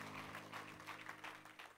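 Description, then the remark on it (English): A large audience claps hands together in steady, dense, loud applause as a hand clap of praise to the Lord during a sermon, with a low sustained organ tone holding underneath throughout. “Give the Lord a hand clap of praise and you may be seated.”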